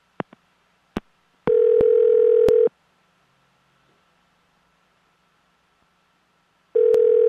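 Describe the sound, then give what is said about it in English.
A few sharp clicks, then a steady telephone ringing tone as a phone call is placed, sounding for about a second, falling silent for several seconds, and starting again near the end. Clear, with no talking. “So we're going to get him on the phone right now and see if we can figure it out.”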